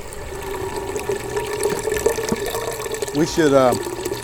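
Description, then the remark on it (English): Apple juice pours from a cider press in a steady, trickling stream, with a soft splashing wash throughout and a brief voice sounding near the end. “Yeah, and you can see the juice just pouring out there right now.”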